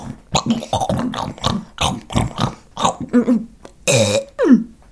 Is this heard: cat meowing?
no